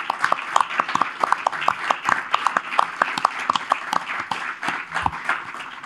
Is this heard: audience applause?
yes